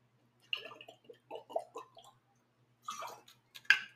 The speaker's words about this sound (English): Jeez, it wasn't really a sip. That was more of like a gulp.